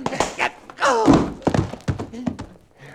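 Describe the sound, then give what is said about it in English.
Heavy punches to a man's face land in a rapid flurry of dull thuds, mixed with a strained vocal grunt, then a few more solid hits follow. “Call him again. Knock his teeth out.”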